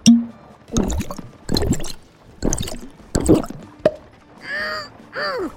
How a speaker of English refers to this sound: Now, excuse me. I've got to go drink my Unigrow.